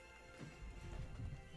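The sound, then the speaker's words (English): Soft, muffled clip-clopping of horse hooves as a horse moves out, a few irregular steps over a low rumbling background, fairly quiet, with no talking. “Yeah, and I make sure that the horse moves, the horse, the goat, and the donkey move a bit faster as we head out.”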